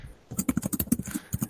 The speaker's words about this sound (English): Oh, and he's typing back.